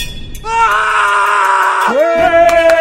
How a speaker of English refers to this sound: There it is. You see, we wouldn't let you down on this. You know the score. This is Random Acts of Irrational Annoyance. That annoying scream. Somebody, talking of Ofcom, somebody did complain to Ofcom that it woke them up with a nightmare.